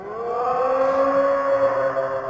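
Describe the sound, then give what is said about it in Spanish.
A single long foghorn-like call, a steady, loud, droning tone that swells slightly and holds for a couple of seconds without any voices. “El monstruo abrió su enorme boca dentada y de la boca salió un sonido que era el llamado de la sirena.”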